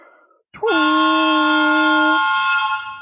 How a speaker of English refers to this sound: The sound of the work whistle from the lumberyard across the town.